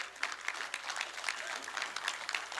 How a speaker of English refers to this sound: I'll let you clap on that one.